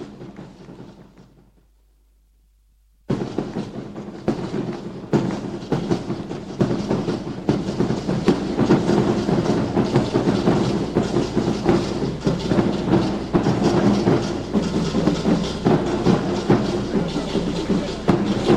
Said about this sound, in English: We can keep the applause going. The effort has been massive, and of course the plaudits have come.